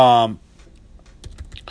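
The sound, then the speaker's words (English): A brief bit of voice at the start gives way to a quiet pause, then a short burst of computer keyboard typing, several crisp clicking keystrokes in quick, uneven succession. “But just typing in something here.”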